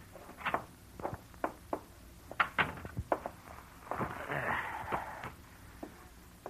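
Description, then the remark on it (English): A series of sharp, uneven footsteps thud and click, followed by a longer scraping, rattling burst as a door is opened, then a few more scattered steps. “Get the door, will you?”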